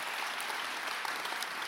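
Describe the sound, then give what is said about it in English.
Steady, dense applause from a church audience on a Sunday morning, about ten seconds of many hands clapping at once in a continuous wash of sharp, crackling claps with no voices standing out. “Give them 10 seconds of hand clap this morning.”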